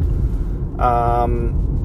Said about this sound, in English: Uh-oh, cop going by.